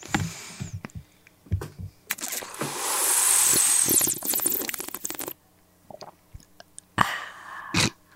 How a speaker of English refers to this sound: What I love about that was the gulping was so loud and annoying, but then you're it's like so gentle.